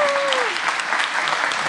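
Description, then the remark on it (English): Steady, loud applause from an audience, a dense wash of many hands clapping at once, with a brief falling whistle-like tone at the start fading into the clapping. “So y'all give her a big round of applause.”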